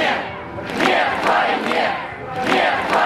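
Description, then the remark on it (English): A large protest crowd marching with signs near Pushkin Square chants the anti-war slogan "no war" in unison, loud, with the shouted phrase rising and falling in a steady repeating rhythm over a constant crowd roar. “The crowd started marching together, holding signs and chanting.”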